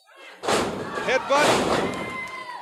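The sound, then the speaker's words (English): A wrestler is body slammed onto the ring mat in a 300-pound straight body press, a heavy thud instantly swallowed by a loud, sustained crowd roar with shouting and cheering voices that carries on to the end. “A straight body press of 300 pounds. And Tony Atlas slammed Vladik Smirnov crashing to the mat”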